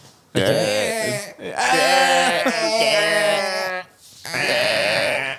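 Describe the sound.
A person imitates a deer call with three loud, drawn-out bleating cries, strained and wavering in pitch, the middle one longest, with short breaks between them.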